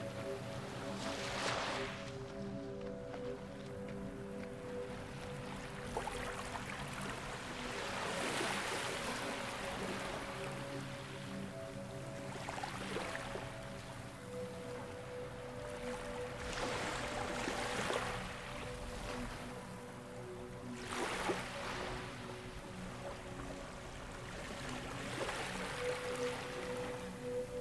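A boat moves through clear, emerald-green seawater under a blazing hot sun, its engine humming steadily while waves slosh and splash against the hull every few seconds, continuous.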